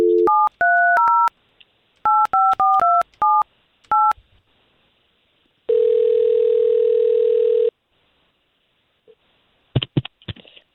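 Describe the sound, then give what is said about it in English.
A quick run of touch-tone beeps as a woman's phone number is punched in by hosts at radio station K92.3 in Orlando, each a short two-pitch chirp, followed by a steady buzzing tone for a couple of seconds, then a few faint clicks. “We're going to try to call her right now.”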